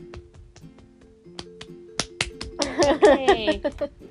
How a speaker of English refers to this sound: You're supposed to clap! I can't clap like this. I'm clapping.